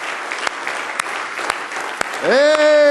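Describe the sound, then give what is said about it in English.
A crowd claps hands in steady, dense applause as a hand clap of praise for the Lord Jesus, and near the end a loud voice rises and calls out over the continuing clapping. “Let's give the Lord Jesus a wonderful hand clap of praise.”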